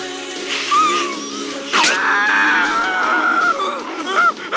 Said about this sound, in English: I won't make you listen to all of his screaming.